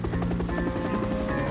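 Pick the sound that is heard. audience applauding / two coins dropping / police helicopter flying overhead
police helicopter flying overhead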